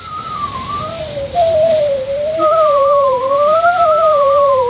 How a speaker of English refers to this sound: Last but not least, another old favorite, Geico, and the old guy in the chair whose nose is musical. I can't believe it. That grandpa's nose is performing Fly of the Bumblebee?